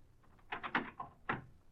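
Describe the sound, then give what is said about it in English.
A door opens with a short series of knocks and rattles, followed by a single sharper thump about half a second later, then quiet. “Open this door.”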